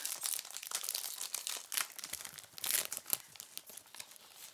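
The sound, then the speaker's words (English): A packet of snack biscuits, a biscuit version of a Chinese fried scallion pancake, is opened with continuous crinkling and rustling of plastic, punctuated by sharper tearing bursts, bright and fairly loud throughout with no voices. “So this is more like a snack. Okay, let's open. Let's open.”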